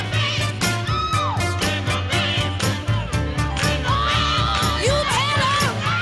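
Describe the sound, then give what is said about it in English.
A singer lets out a loud, sustained scream over layered backing vocals, set against a dense full-band mix with steady driving drums and heavy bass. “I love the scream and the backing vocals here.”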